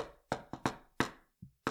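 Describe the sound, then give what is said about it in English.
A person's own signature knocking pattern of knuckles rapping on a door: six sharp knocks in an uneven sequence, one noticeably softer and duller, with no voices. “No, right? this is my knock. I'm not even kidding. This is my knock for people.”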